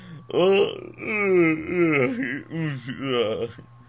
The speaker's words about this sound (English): Oh my god, stop yawning. Sorry. If the show wasn't boring enough, listen to us yawn.